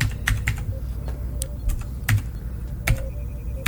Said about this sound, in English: Listen to those mechanical keys. Clack, clack, clack, clack, clack, clack.